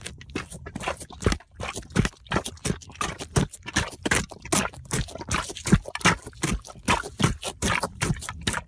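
Wet, squelching footsteps sloshing in a steady walking rhythm, each step a sloppy splash of water churning inside rubber boots that filled with water after a booter, recorded in Winnipeg, Manitoba, Canada by a 10-year-old; no voices.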